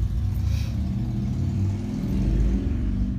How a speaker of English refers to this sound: Hey, look, it's a motorcycle. Hang on.